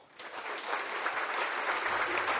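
Modest, tepid audience applause after a speech about Australia, a steady wash of many hands clapping without much energy, starting abruptly and continuing evenly with no cheering or voices.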